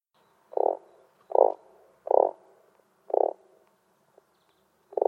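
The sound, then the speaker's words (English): A frog croaks five times in a steady, evenly spaced rhythm, each croak a short, throaty burst, fairly loud against an otherwise quiet background with no talking. “Terrible humans. Poor frogs.”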